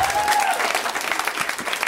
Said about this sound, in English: I fucking set up my own phone today. Wow, thank you. Round of applause. Wow.